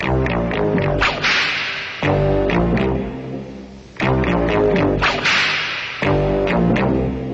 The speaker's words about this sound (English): I quite like that whip song. It's just bad enough to be good. Yeah, I'll play this now. It's an orc marching song, where there's a whip, there's a way, and it's really difficult to take their army seriously if they're singing this.